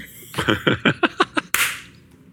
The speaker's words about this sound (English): Ouch. Ow! That was a double slap.